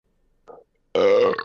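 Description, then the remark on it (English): A short, faint gulp comes first, then a loud, drawn-out, resonant burp lasting about half a second, with no talking around it. “He loves it when people burp and leave it in on podcasts.”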